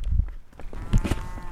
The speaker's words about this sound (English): Oh, I heard a cow. I heard a cow here. This is where they walk around. They live here.